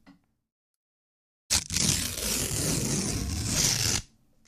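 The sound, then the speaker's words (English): Paper being ripped in one long, loud tear lasting about two and a half seconds, a dense crackling rasp that starts abruptly after silence and cuts off sharply. “To listen to me rip paper.”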